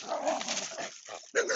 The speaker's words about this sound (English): The dogs are barking. Come on, bud.